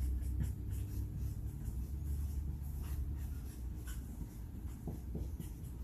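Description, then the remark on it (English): A pen scratches steadily across a piece of paper in short strokes, writing a word or two, fairly quiet, over a constant low rumble in the background. No one speaks. “I'm going to write a word or two on this paper.”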